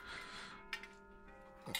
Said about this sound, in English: That's the clock. I feel like I'm on like NPR right now. It's our like grandfather clock.